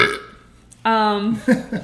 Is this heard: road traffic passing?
no